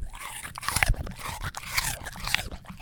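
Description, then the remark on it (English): Loud crunching and chewing as a dog bites into a carrot, with irregular sharp cracks and wet mastication repeating over a few seconds, no talking. “Is the crunch of a carrot too powerful and I should use an apple instead?”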